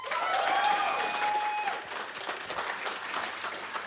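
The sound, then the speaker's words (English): A crowd applauds steadily with dense, sustained clapping, loud at first and easing slightly, while a few whistles ring out early on; the audience is clapping to vote for Mario Party as the best hero of Gotham. “No, I mean, and now clap if you think that Mario Party would be the best hero of Gotham.”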